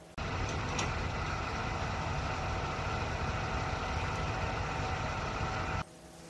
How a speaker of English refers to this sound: Anyhow, they turn up in this monster recovery truck. Huge, great thing. And they start attaching winches and stuff like that, like this. I did tape some of it. Here's the monster recovery truck. Here's the winches.